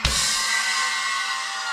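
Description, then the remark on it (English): A crowd of school kids and teenagers screaming together on cue, a loud, sudden burst of many high-pitched voices at once that holds steady for nearly two seconds. “One, two, three, scream!”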